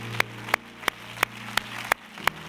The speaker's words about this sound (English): Clap your hands, somebody, to the Lord.